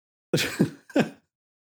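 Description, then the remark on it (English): A sneeze heard on its own: a sharp, breathy burst with a quick voiced catch, then a second short explosive burst, both fairly loud, with no talking. “Bless you”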